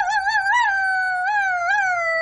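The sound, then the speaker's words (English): A person imitates a wolf howl, holding a sustained, wavering high-pitched tone for about two seconds with slight warbles, fairly loud, no other sounds around it. “That's your wolf? Yeah. We got to step it up a little bit from that.”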